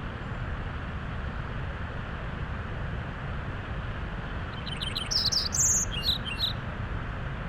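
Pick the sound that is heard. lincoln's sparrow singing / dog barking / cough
lincoln's sparrow singing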